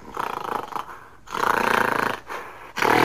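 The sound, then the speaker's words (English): A mountain gorilla blows air through its lips in several loud, fluttering bursts, a sputtering raspberry-like rumble repeated with short pauses, with no talking. “So what he's doing right here is blowing through his lips.”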